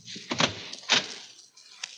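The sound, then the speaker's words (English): A door is handled: a couple of solid clunks and rattles in quick succession, then a quieter knock-like thud a moment later, with no voices. “Who was that at the door?”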